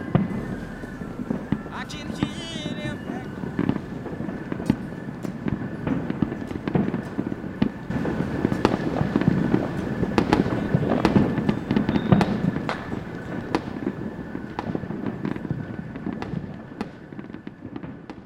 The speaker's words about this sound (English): I can hear the fireworks. Even in December. I can hear the fireworks.